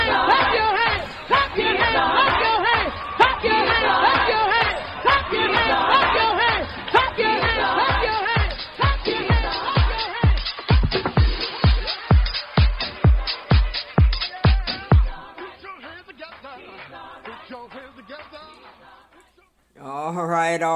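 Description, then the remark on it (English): Gospel house music plays loud and full, with layered vocals over a steady four-on-the-floor kick drum that thumps prominently before the track drops to a quieter, sparser ending. “That was a gospel house mix”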